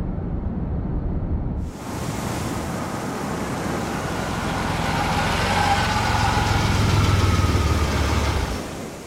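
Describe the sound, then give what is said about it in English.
A Land Rover engine idles with a steady low rumble, stopped at a parking area by the sea, blended with a constant broad hiss like wind or surf that swells slightly before fading near the end. No voices. “Stop the Land Rover.”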